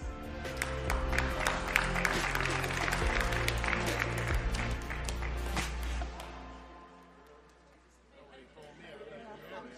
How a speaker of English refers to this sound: It's good to see Second Service getting the clap going. That's good. You're picking it up. I like that.